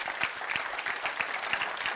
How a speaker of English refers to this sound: If you believe it, clap your hands and say amen.